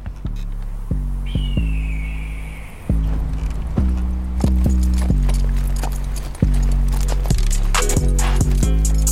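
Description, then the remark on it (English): Steady clip-clopping of hooves from a horse with two speakers hanging off its back, which play loud, thumping bass music; sharp clacks repeat in an uneven rhythm, with no voices. “coming up on a horse that has two speakers hanging off the back of it and a volume knob.”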